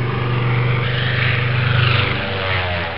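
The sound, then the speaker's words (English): A propeller-driven fighter plane drones steadily overhead, its engine a loud, continuous rumbling buzz that swells slightly as it passes. No voices, just the engine. “The Battle of Britain was mostly fought between fighter planes.”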